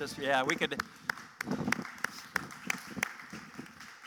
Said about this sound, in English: That sounds a little like the applause you get for 12th place in the British Open this weekend, but you know.